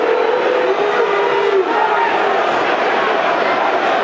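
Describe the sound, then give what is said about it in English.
A large football stadium crowd at the Den roars in a sustained, loud, displeased din after a long-range shot hits the crossbar, a dense wash of shouting and jeering voices that holds steady throughout without pause. “Crowd are not happy.”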